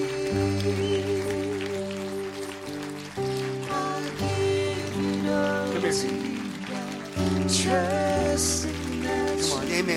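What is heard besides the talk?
audience clapping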